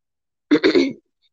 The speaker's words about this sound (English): All right, gotta clear your throat.